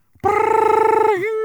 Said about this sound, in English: Hang on, my phone's ringing.